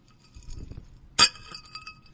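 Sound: glasses clinking together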